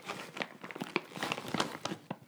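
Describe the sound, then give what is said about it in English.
Chewing of a large piece of mango habanero beef jerky, a steady run of moist, crackly bites and smacks over about two seconds, fairly quiet with no talking. “People don't need to hear me chewing that much.”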